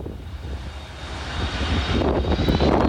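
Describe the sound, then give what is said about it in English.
A Boeing 747-400 jet airliner coming in to land at St. Martin Airport, flying low over the beach, its engines a steady, broad roar that swells slightly louder as it approaches, with breezy wind buffeting and no one talking. “You'll be able to hear the aircraft. This is a 747-400 coming in.”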